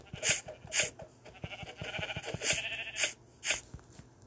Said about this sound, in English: Ooh, there's, like, sheep over there. Time to go kill them.